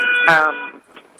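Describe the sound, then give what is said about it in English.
A single long, buzzy car horn blast sounds in a New York City street for over half a second, loud and steady in pitch, then cuts off into faint street background noise. “We're hearing the honking and all the other fun background noise.”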